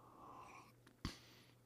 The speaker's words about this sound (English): So this is, we're in Ephesians 4, and let's have a sip of coffee and we'll get going.